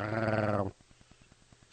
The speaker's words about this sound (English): I like your growl. You're busting out tonight. I am. I was working out all day.